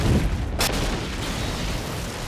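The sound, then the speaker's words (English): The engine of the boat Orca in the film Jaws explodes after grinding from burned-out bearings: one sharp, loud blast cracks over a heavy, continuous low rumble, which keeps churning steadily after the burst. No voices. “of the blow-up of the Orca, but everybody listen to, right before the explosion, the grinding sounds. You burned out the bearings.”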